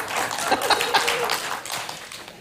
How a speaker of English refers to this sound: Yes, lady, even shoes. Someone clapped at that. Woo!